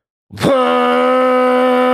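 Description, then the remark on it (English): A voice imitates the foghorn braam used in movie trailers when they cut to black: one loud, low, buzzing drone with a rough growling start, then held steady and unbroken at a constant pitch until the end. “It's like this huge foghorn sound when it's like cuts to black and then it's like Godzilla takes a step.”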